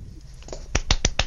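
A short run of light, polite claps: four crisp, evenly spaced hand claps, preceded by a couple of fainter taps. The claps are sparse and unhurried, with no voices.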